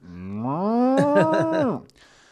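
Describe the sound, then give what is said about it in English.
A single drawn-out moo imitated by a human voice, rising in pitch, then wavering into a throaty, pulsing rumble before cutting off. It's loud, with no other sounds around it. “Guttural thing. Bulls don't make that noise. Moo.”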